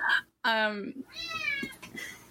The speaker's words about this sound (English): He just, like, walked in here and opened the door and just stood there and was like, meow!